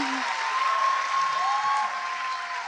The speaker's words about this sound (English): Too much. There's too much clapping. It's too much clapping.